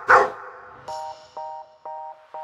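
A single sharp dog bark, followed by three or four short, steady, buzzy electronic tones repeating in an even rhythm. No one speaks.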